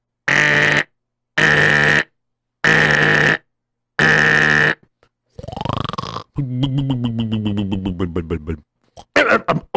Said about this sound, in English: And so, what happened was his Boris Kavinnikovsky, he went and he took a nap. And then, at 12 midnight, his alarm rang.